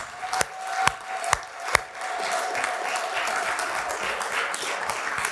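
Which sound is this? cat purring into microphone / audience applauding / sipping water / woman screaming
audience applauding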